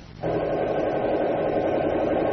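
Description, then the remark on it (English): A heavy armored car coming down the road kicks in abruptly, its engine holding a loud, steady, grinding drone with a low rumble underneath, no voices over it. “Hey, look what's coming down the road. Is that an armored car?”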